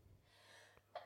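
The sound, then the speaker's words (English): A brief, stifled sneeze bursts out near the end, with a soft sharp intake of breath just before it; fairly quiet, with no talking. “I won't say it again.”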